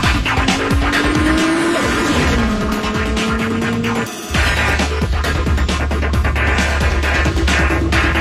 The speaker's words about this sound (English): A guy called in, he goes, oh, you got to listen to when they rev up the engine. It says Ferrari. It's bizarre. The car itself says Ferrari.